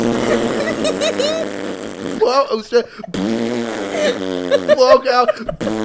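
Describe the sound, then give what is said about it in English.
A voice blows a long, wet raspberry imitating a fart, sputtering on and off for several seconds with buzzy, fluttering bursts, loud. “Like the terrible death fart at the funeral is horrible, but maybe I mean I guess you could blame it on the dead body, right?”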